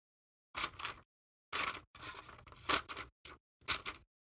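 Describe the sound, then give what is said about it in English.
Scissors slice and rip through cloth mummy bandages in several raspy bursts, with one longer drawn-out cut in the middle and short pauses between, no voices. “some scissors if you please.”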